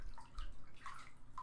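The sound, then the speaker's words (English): Water sloshing and splashing in a bathtub, continuous, with small gurgling and bubbly tones rising through the steady wash of movement. No one speaks. “Maybe you should drink some of my bath water.”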